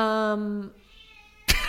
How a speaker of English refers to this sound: What a freakish meow you have. No, that's a wonderful cat. That is music to my ears to hear that cat meow.